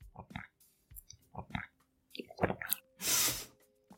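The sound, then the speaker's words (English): Gulping, a series of wet swallowing clicks in quick pairs as someone drinks a glass of wine, followed by a loud breathy exhale after the last swallow. “I just hear the gulping.”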